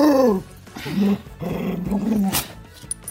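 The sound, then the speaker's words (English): A female dog, not a lap dog, growls and grumbles in a few drawn-out, rising and falling bursts, fairly loud, with brief pauses between them. “One's a lap dog. She's not a lap dog.”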